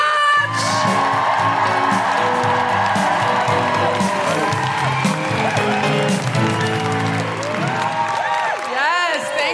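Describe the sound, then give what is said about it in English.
A crowd cheers loudly and steadily for about ten seconds, welcoming a performer introduced on stage, with many overlapping high whoops swooping up and down over a dense wash of clapping and shouting. “Put your hands together and make incredible woo-hooing noises for the one, the only,”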